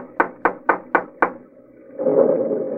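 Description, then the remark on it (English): Five firm, evenly spaced knocks on the wooden door of a mansion in New Orleans, fairly loud, followed after a short pause by a low, steady rustling noise. “Go ahead and knock at the door.”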